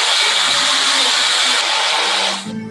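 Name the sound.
blender running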